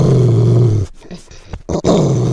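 A deep, rumbling growl, loud, holds for about a second, breaks off into a brief pause with a few scuffing bursts, then rumbles back in. No one speaks.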